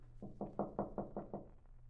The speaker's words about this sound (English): Well, if there's no answer. Well, knock again, Mike.